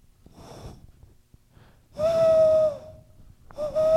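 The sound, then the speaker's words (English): A person does a breathy vocal owl impression: a soft, airy intake, then two loud, drawn-out hooting tones, the second cut short at the end. “I can do an owl.”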